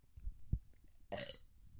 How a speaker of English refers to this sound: I just burped. I'm sorry. I can't filter myself. I had to burp.